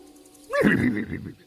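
horse whinny sound effect

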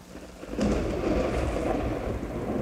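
thunderstorm with heavy rain

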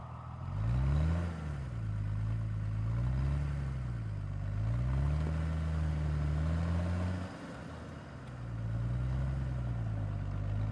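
car driving

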